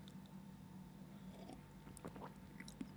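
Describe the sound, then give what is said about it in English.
Someone sips coffee: a few soft, short slurping and swallowing mouth sounds over a quiet low hum, with no talking. “So the next sort of, let me have a sip of coffee first.”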